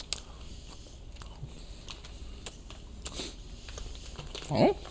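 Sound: chewing beef jerky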